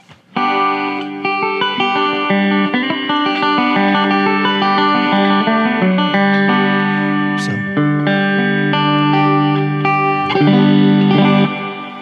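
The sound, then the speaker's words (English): A banjo plays a steady run of plucked notes drowned in heavy reverb, each note smearing into a dense, washing sustain that fills the space. Fairly loud, with no talking. “I mean, that's a ton of reverb. That's like, yeah. That's a ridiculous amount”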